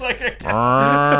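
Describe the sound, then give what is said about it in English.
A person makes a couple of quick vocal syllables, then draws out a long, steady, low-pitched, loud moo in imitation of a cow. “That's like a cow. That's a straight-up a cow.”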